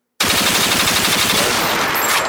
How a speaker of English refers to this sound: Gunshots.